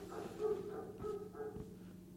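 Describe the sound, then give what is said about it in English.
A dog barks and yelps in a quick series of four or so short, whiny bursts, fairly faint, with no one talking. “Can we get the dog in, please”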